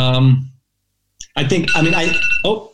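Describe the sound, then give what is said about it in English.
A short electronic alarm chime rings out, and after a brief pause a steady high-pitched tone carries on beneath a voice talking over it. “That was an alarm about this podcast that's 24 minutes late.”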